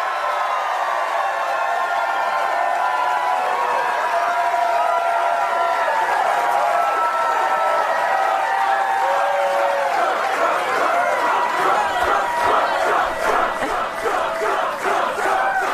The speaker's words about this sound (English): That crowd yelling, Trump, Trump, Trump.